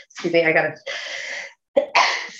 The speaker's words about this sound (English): I just sneeze there.